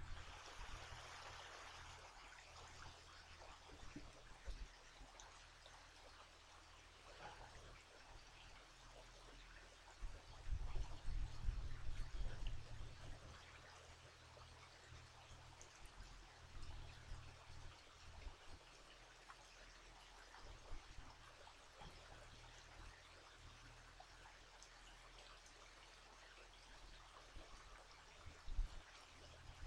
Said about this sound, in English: gorgeous creek, giving us its beautiful love gifts. The creek that is the superhero of love in Boone, North Carolina.